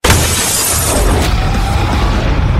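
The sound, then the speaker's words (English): A window pane shatters with a loud, sudden crash, followed by a bright, noisy spray of breaking glass that rings on for a couple of seconds as the sharp high tinkling gradually thins out. “The window.”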